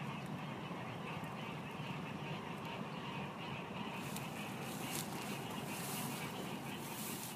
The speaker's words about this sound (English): That's the sound of Blanchard's cricket frog. as we get closer to evening, the frogs are really coming to life out here.